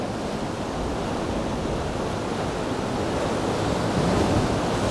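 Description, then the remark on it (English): Loud, continuous roar of waves smashing through a rocky gully at the Devil's Cauldron in brutal conditions, a dense churning wash of surf with no pauses, heavy, with some wind buffeting the microphone. “The waves are smashing through the gully.”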